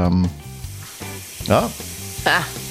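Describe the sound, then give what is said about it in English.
Shower water runs in a steady, hissing spray that continues throughout, with a few short bursts of voices rising over it. “I hear the water. He's always in the shower.”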